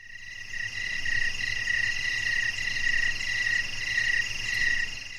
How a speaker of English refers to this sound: Crickets.